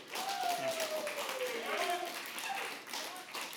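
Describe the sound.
A round of applause at a church service for the man about to preach the sermon: steady, dense clapping from a crowd lasting several seconds, with voices calling out and cheering over it before it begins to thin.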